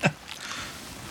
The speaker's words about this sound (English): Oh boy! Are you still alive? Because I hear a lot of water. I'm downstairs trying to plug the holes.